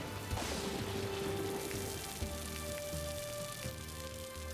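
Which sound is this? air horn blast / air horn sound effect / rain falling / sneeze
rain falling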